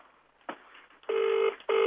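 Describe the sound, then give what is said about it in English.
An outgoing phone call rings: after a faint click, two loud, steady electronic ringback tones play through a thin, phone-line sound, the second one starting just after a short pause. “Answer your phone”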